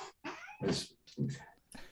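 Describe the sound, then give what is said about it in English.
A cat hisses and yowls at another cat in a quick series of harsh, agitated bursts, fairly loud, with no one talking over it. “Kissing at the other cat.”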